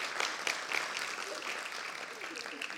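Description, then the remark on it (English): An audience applauds for their pastor, who preached the week before, with steady, dense clapping that holds an even level throughout, with a few brief sharper bursts and some faint voices mixed into the crowd noise. “Now, come on, give a big round of applause for our pastor.”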